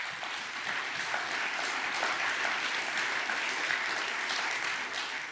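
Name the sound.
audience applause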